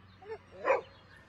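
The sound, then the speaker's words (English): A dog gives a brief, high yip followed by one short, sharp bark, fairly clear, with no talking around it. “Look at the cute dog.”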